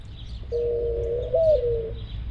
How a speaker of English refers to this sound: There's a dove! There's a dove! There was a plump gray bird with a white-edged tail on a branch overhanging the wall.